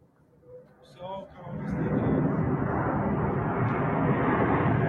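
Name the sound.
airplane taking off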